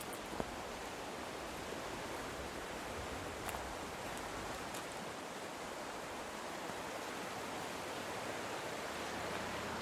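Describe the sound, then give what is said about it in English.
A steady, unbroken rush of Glacier Creek in Girdwood flowing past its bank, moderately loud. There are no voices, only a few faint clicks and splashes over the constant wash. “I'm making one last trip to Girdwood to sit on the banks of Glacier Creek and reflect on what I've learned over the last year.”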